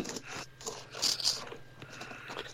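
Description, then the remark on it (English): Someone cleans a computer keyboard: a busy stretch of dry scraping, rustling and small plastic clicks, irregular throughout, with a brief louder, hissy burst midway. No one speaks. “Sorry, love, you caught me cleaning my keyboard.”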